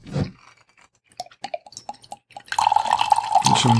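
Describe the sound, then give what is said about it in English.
A soft thump and a few scattered drips and light clinks give way to a steady, splashing pour of wine into a glass as it is refilled during a wine tasting with steak, its ringing tone rising as the glass fills. No one speaks. “Let's reload the glass.”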